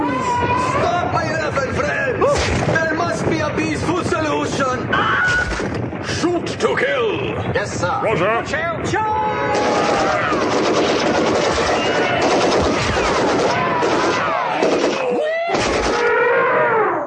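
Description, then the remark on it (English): Heavy, high-caliber gunfire rattles in loud, rapid bursts that run almost continuously, with sharp cracks piling over one another while voices shout commands over the din. “At least we're getting taken out by a high-caliber weapon.”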